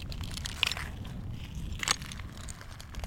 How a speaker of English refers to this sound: The tide was out. I negotiated the mud, walked over the broken pottery, the smooth glass shards, and just let the reporting fall apart.